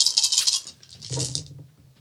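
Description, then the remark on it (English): A handful of nine dice clatter and rattle across a hard surface in a quick burst, followed by a second rolling tumble before settling, fairly loud with no voices. “That's your dice lot. See how many sixes you get.”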